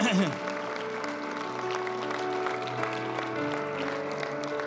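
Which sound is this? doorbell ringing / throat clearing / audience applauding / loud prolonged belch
audience applauding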